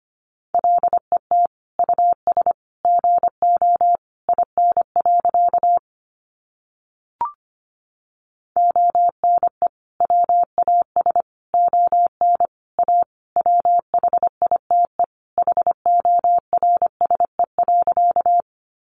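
Rapid Morse code at about 25 words per minute, sending practice sentences made from the top 300 words: a steady mid-pitched tone keyed on and off in quick dots and dashes, with a short pause midway and no voices.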